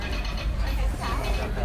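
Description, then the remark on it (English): Water rushes steadily into the large water tank of a steam train being refilled on the Disneyland Railroad, a continuous heavy, rumbling gush with mechanical undertones and a faint murmur of people in the background. “We're just refilling our water tank right now, and we'll be on our way momentarily.”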